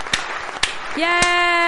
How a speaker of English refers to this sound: We have a little applause.